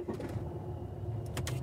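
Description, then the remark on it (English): A car being parked by a driver with no arms, arriving at a hospital in March 2018: a steady low engine rumble as the vehicle slowly maneuvers, with a few brief mechanical clunks and rattles toward the end. No one speaks. “This is very impressive parking,”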